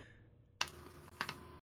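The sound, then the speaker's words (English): A few loud, clacky key presses on a Model M keyboard: one sharp strike, a pause, then two quick strikes close together, with no voices. “I can't type. I was going to look it up, but I have a Model M keyboard.”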